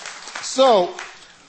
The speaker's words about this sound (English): Okay, that's applause. That's right. That's applause.